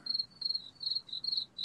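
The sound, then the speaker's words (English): A crickets sound effect: crickets chirp in a steady, repeating pattern of short high-pitched trills, about six bursts in quick succession, fairly quiet and alone with no voices. “I heard crickets.”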